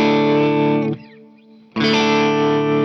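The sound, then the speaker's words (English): A loud, sustained electric guitar chord, played through a reverb pedal and a tremolo pedal into an amp, rings out washed in reverb and tremolo, drops away briefly to a thin shimmering tail, then surges back in full. “Beautiful. Reverb and trem.”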